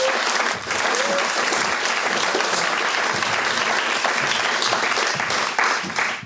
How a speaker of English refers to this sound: I'm going to get a massive round of applause for